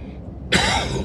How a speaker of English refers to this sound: Sorry about the cough.